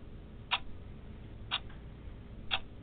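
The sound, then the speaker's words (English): Three sharp shot clock ticks land exactly one second apart, crisp, like a countdown sound effect over a low steady hum with no one talking. “A shot clock was ticking on you.”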